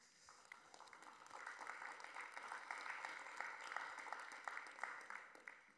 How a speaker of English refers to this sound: I know it feels kind of weird to clap when someone makes an announcement like that, doesn't it? Yay, stepping down. No, that's not why we're clapping.